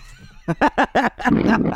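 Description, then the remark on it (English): A dog barks four times in quick, evenly spaced succession, loud and sharp, then the barks give way to a rougher, breathy growling noise. “and out of nowhere, a dog marked.”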